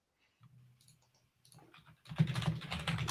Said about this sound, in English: Here we go. The keyboard sticking.